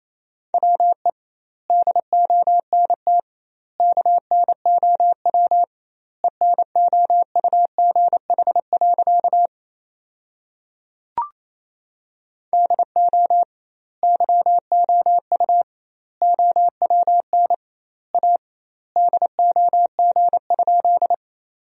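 Fast Morse code practice at about 28 words per minute with doubled word spacing, sending sentences built from the 400 most common words: a single steady mid-pitched tone keyed into rapid dots and dashes, grouped into words with longer gaps between them, with no voices.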